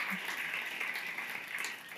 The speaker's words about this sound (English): Would you just give a round of applause to